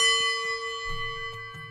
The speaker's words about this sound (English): I can hear a tone, Jim. But wait a minute. What is that tone? Why, is that a Tibetan singing bowl?